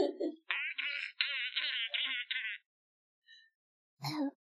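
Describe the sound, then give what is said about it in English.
A voice demonstrating a 'laugh in the throat' sound imitates a dolphin with a run of high, warbling squeaks and chirps for about two seconds, then a pause and one short squeal, fairly loud. “It's a dolphin noise.”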